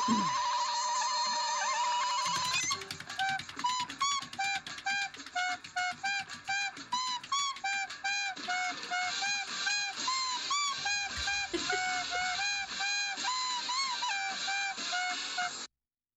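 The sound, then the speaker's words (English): A prize wheel for a challenge game is spun, giving a steady run of rapid clicks, each tick carrying a bright chiming tone. It starts after a short lead-in and keeps ticking clearly for over ten seconds before stopping. “In this wheel challenge, I'll be spinning this wheel behind me.”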